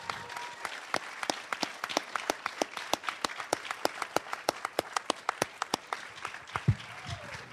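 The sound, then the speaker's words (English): A crowd applauds steadily as guests walk down to join them, with a few sharp, loud hand claps standing out over the softer clapping for several seconds. “Oh, here they come! Everybody, clap!”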